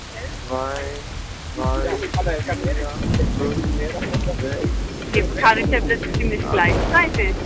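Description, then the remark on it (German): Steady rain hisses throughout a stormy evening thunderstorm while people talk over it; any thunder stays low and indistinct beneath the downpour and voices. “1, 2, 3, 4, 5, 6. Jetzt kann ich der Blitz ziemlich gleichzeitig.”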